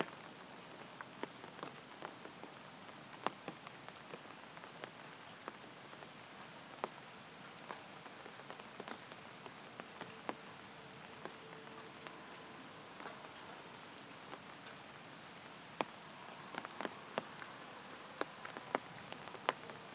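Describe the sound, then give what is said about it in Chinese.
Steady rain on a rainy day at a place called Yangguang Cuiting, beside the Fangsong Subdistrict activity centre, pattering on hard surfaces, with scattered louder drops tapping irregularly over a continuous wash of hiss. No voices, just the even patter throughout. “又是一个下雨天，这个地方的名字叫阳光翠亭，旁边是我们方松街道活动中心。”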